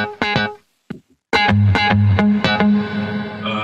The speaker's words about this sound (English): But yeah, it's a super simple guitar sound from Goliath. But I think I did a bit of processing. So without processing, sounds like...